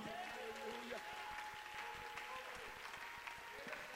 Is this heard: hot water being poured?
no